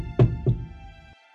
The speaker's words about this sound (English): I'll knock on the door slowly.